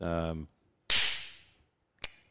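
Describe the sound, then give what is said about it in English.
A brief voiced sound, then one sharp, loud hand clap made to sync a recording, its ring fading over about a second, followed by a second, quieter snap-like click. “Should I clap? Should we clap? Yeah, we should.”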